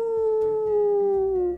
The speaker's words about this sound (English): Do you know what creature makes that sound? Yes, wolves. There was a pack of them that lived nearby, and I guess this storm was making them very noisy.